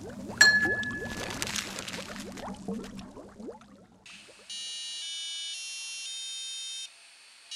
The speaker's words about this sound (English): The oven chimes.